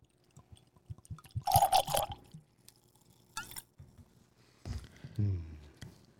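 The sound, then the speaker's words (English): A cork squeaks and pops free of a whiskey bottle, followed by whiskey glugging out in a short burst of pouring, fairly quiet with no talking. “And I think there is some art and craftsmanship to making a bottle that will sound off, if you will, when you both pop the cork and pour the whiskey.”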